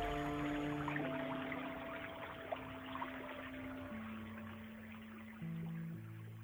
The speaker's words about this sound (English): as she records a persistent flow of brownish water gurgling like a creek right past the doorway. You can see formless blobs quickly floating by as the water exits the building. "This is the water coming out of the library. You can see it flowing.